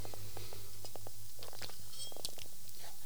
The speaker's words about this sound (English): Excuse me, quick water break.